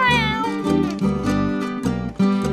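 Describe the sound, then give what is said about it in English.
A cat meows loudly, a drawn-out, wavering cry broken into about three bursts in quick succession, with no voices or other sounds around it. “Oh, but the cat got out in the nick of time.”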